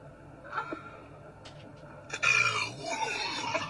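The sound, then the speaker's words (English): A long, loud burp from a woman in a car who has been chugging a carbonated drink bursts out after a few quiet seconds, rough and rumbling, stretching for well over a second. “I mean, that is a burp that from is, a woman.”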